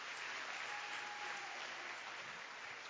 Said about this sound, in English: Why don't you clap your hands for Jesus?